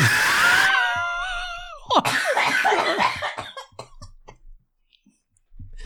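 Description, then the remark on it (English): A voice lets out a loud, shrill, wavering screech, imitating a pterodactyl, for nearly two seconds, then breaks into ragged bursts of laughter and coughing that fade out. “Come on, do the pterodactyl noise, please.”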